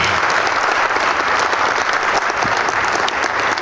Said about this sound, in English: And so why don't you give her a round of applause for the worship set.